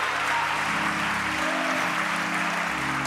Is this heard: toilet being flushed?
no